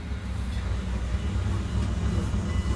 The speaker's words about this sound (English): Hey, we're really in luck. Here comes the Southern Pacific freight train.